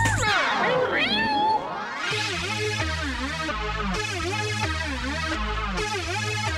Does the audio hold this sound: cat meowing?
yes